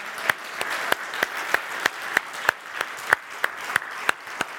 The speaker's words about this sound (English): Why don't we just give him a round of applause?